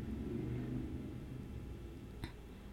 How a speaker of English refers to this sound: That's a brother riding. He's on a motorcycle. Is that our security? Is that our community security going on?